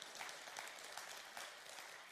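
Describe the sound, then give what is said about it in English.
An audience claps after a sung piece in a dense, steady patter that holds at an even level for about two seconds, with no voices over it. “That must have been anointed for you to clap for that, because I can't sing a lick.”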